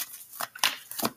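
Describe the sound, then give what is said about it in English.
Three short, crisp bursts of tarot cards being shuffled, papery snaps and riffles, fairly quiet, with no voices. “Let me shuffle this three times.”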